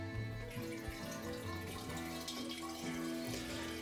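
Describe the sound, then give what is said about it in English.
Water runs steadily from a tap, a continuous hiss with a resonant, shifting hum underneath, as if splashing into a basin. No one speaks. “Are you pissing? Get water.”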